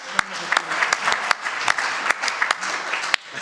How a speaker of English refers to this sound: So that was the, yes, yeah, round of applause